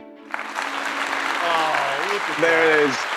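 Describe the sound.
A burst of applause fills the room, steady clapping from a crowd that keeps going for a few seconds, with some voices cheering and calling out over it.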